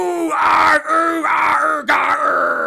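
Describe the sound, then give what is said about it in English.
Voices howl and wail together in a loud, drawn-out imitation of the burning Owlman's howl from a film finale, rising and falling in three strained bursts separated by brief breaths. “A never-ending feather storm, a noisy feline named Lucifer, the catwalk showdown, and the burning Owlman howl. Let's scream it together now.”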